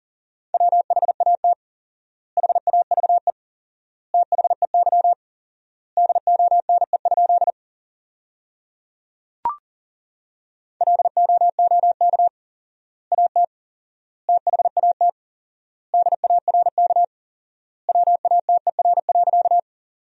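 Rapid Morse code at 40 words per minute with four-times word spacing, in a steady mid-pitched beep, sending sentences built from the 500 most common words in quick bursts of dots and dashes with long pauses between words. A single click sounds midway through; no one speaks.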